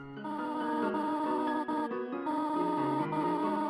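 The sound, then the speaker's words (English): Rapid, chirpy synthesized voice blips patter in quick succession over a steady melodic game tune, clear, with brief pauses between bursts of dialogue typed out in a box. The voice is Toriel, a motherly goat character wearing robes. “the sound of their voice is pure gibberish, and a box appears and their dialogue types out. But the typeface and the pitch of their voices have a surprising amount of personality.”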